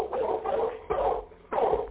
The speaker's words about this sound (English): See, we can hear that dog barking right now.